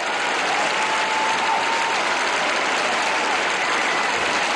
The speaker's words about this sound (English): This is by far the biggest ovation anyone has received here in this opening session of the Democratic Convention.